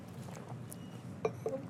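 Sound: sipping coffee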